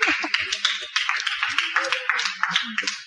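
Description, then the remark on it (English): A crowd at a sermon applauds steadily for a few seconds for John the Baptist, many hands clapping in a dense, continuous patter, moderately loud. “Please clap for him.”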